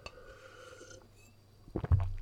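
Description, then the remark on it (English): Someone sipping a drink: after a quiet moment, a couple of soft slurps lead into a low, gurgling swallow that lingers briefly at the end. No one speaks. “Sip my drink, sorry.”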